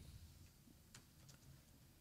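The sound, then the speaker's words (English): A few quiet, irregular keyboard clicks, like someone typing a Twitter search on a computer keyboard, sound over a low steady hum, with no one speaking. “Type in Epstein. Hey, you got a keyboard.”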